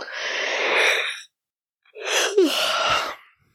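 A sampled human yawn: two loud, breathy exhalations, each lasting over a second, separated by a short silence, with the second one rising into a strained vocal note.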